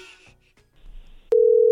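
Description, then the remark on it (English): A phone's outgoing call ringing tone begins partway through, a loud, steady electronic hum, clear after a moment of faint background noise. “Okay, it's ringing.”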